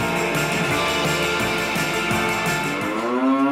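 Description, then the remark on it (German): A cow moos loudly, a long, drawn-out low call whose pitch rises toward the end, heard alone with no talking. “Dass wir Kühe Kälber bekommen müssen, damit wir genug Milch abliefern.”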